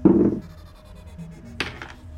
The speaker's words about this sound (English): Yep. I'm just making sure all the wolves are in their correct spot. Yes, that's what that dice roll was for.